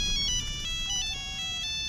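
A flip phone ringtone plays a bright, chiming electronic melody with stacked high tones, steady, over a low background rumble with no talking.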